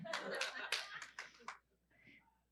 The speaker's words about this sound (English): It's a small golf clap for you.